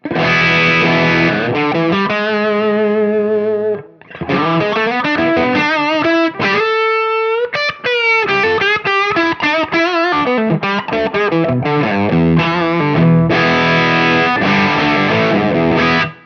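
Loud, heavily distorted electric guitar playing chords and riffs alone through a main distortion, its tone shifting noticeably as the boost side of a Tube Screamer pedal placed after it is switched on and off, with brief pauses between passages.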